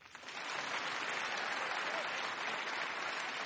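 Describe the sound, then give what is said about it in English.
A crowd at an Intelligence Squared U.S. debate at the Skirball Center for the Performing Arts, New York University, breaks into steady, loud applause as the lecterns are removed before the second round, many hands clapping in a dense continuous wash that swells within the first half second and holds evenly to the end. “All right, let's all clap.”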